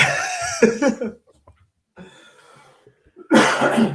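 A dry cough from a person who has had it for three days, in two harsh bursts: a loud fit at the start and another near the end, with faint breathy sounds in the quiet stretch between.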